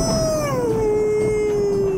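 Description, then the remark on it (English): A person imitates a howl like Grimace, the McDonald's character: a sustained, wavering vocal tone that slides downward and holds steady for about two seconds. It is loud, with no other talking. “Grimace howls, right?”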